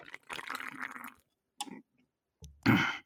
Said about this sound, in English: And the aftertaste isn't that bad. This actually goes down smooth. Hold on. Let me take another sip. I need you guys to hear this.